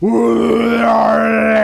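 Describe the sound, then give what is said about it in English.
A person imitates a bear's roar with one sustained, loud, growling vocal bellow lasting under two seconds, harmonically rich and steady in pitch, with no other talk. “the bear takes offense. Okay? He's had enough. He roars.”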